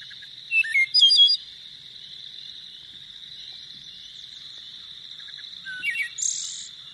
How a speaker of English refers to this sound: That's my favorite songbird. That's the most beautiful bird song I think there is. All right. And there we go. There we go. Right. That's a wood thrush right there.